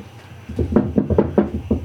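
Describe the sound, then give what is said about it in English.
A quick, uneven series of about eight hard knocks on a wooden table, made by people knocking on wood, fairly loud, with no talking over them. “That was us knocking on wood.”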